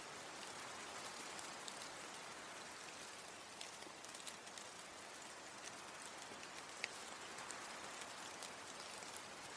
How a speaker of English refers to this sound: today's rain sound is actual rain falling in nature. So if you think it sounds like wind or static, I assure you it's not. It's actual Mother Nature's beautiful rain sounds.